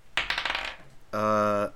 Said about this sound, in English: Yeah, roll perception. Roll a d20.